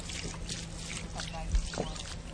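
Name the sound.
water poured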